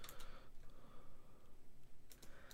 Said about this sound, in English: I'm typing one hand right now. That's tough.